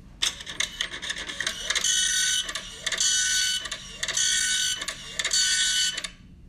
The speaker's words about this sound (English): That sounds like ringing up something on the cash register. Close. Yeah, a printer. A dot matrix printer is okay. Actually what it is.